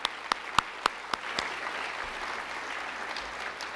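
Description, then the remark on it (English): An audience in Norfolk applauds in a steady wash of clapping for the groups and team who helped secure an office lease for ADP, with a few sharp, louder individual claps standing out near the start before settling into an even, sustained crowd sound. “Please give all of them a round of applause as well.”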